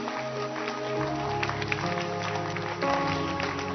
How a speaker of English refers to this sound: Clap your hands.